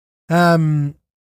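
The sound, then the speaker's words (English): A single loud, voiced yawn into a microphone lasting under a second, a drawn-out open-mouthed groan that drops in pitch partway through, then stops abruptly into silence. “I don't like to yawn into the microphone.”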